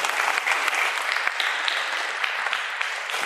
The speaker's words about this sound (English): Give a round of applause again, folks.